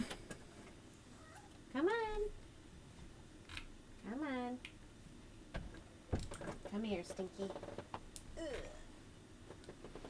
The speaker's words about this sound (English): Give me 1 second. My cat is crying.